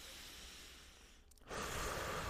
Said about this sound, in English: Have you taken your daily breath? Let's take a breath together right now. Ready, guys?